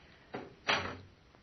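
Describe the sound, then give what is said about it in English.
Two side doors shut in quick succession, the first a softer thud and the second a louder, fuller bang that rings out briefly. No one speaks. “Out this way and shut the doors behind us.”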